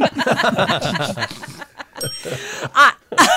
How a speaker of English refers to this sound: You take that bell back.